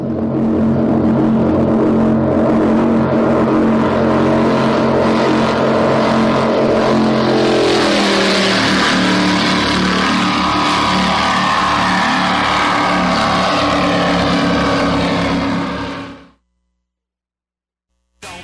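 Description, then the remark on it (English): A Cigarette luxury powerboat engine roars loudly and steadily, its deep droning pitch shifting as it revs partway through, then cutting off abruptly near the end. “as they build the custom-designed luxury powerboats of tomorrow”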